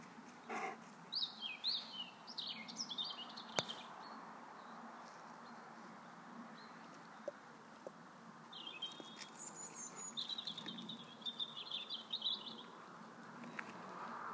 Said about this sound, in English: Now, I don't know whether... I keep imagining that's a chaffinch. Rather than a willow warbler.